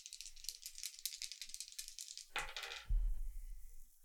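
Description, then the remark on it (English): A rapid clatter of two dice being shaken and rolled across a surface, ending in a heavier thud and settling rattle; fairly loud, no talking. “Roll two dice.”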